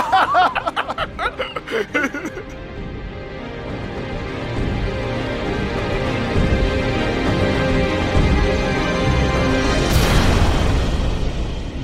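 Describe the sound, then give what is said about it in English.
A short burst of chuckling gives way to a deep, rumbling explosion on a ship that rocks it onto its side and back, swelling and lingering for several seconds, with a bright crackling flare near the end. “Panic explosion behind you.”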